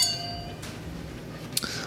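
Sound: glasses clinking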